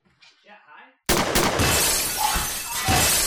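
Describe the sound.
A faint, muffled voice gives way to a sudden, very loud gunshot, followed by a few sharp cracks and a sustained wash of harsh, crackling noise, like something shattering.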